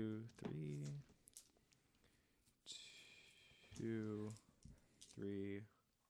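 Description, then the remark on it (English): Metal dice clatter and click against a tabletop in a few short bursts during a tabletop role-playing game, mixed in among voices and vocal sounds that run through most of the moment. “Ow, the metal dice hurt so much.”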